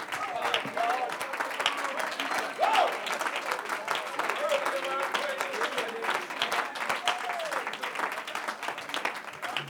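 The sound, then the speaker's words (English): An audience claps their hands together to worship the Lord in steady, dense applause that fills the room for about ten seconds, with scattered voices calling out and cheering beneath it. “Come on, let's clap our hands and worship the Lord.”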